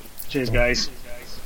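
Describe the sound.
A person gives a single loud, harsh caw, voicing an impression of a raven, with a brief raspy call lasting about half a second before trailing into quiet room noise.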